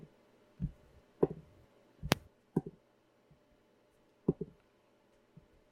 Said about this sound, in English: And I'm just going to roll some dice.